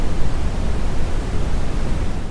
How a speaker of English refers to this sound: This is it. Okay, listen. Brown noise.